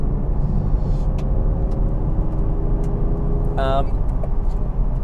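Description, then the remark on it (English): Steady, loud road rumble and engine drone from inside a car cruising along a highway, with a brief high chirping burst partway through. “I gotta get my ass going here on the highway.”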